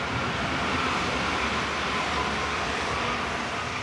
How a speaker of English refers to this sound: We turn a corner to find the train tracks in front of us and a New Silk Road train passing through, headed west to Central Asia and possibly all the way to Europe.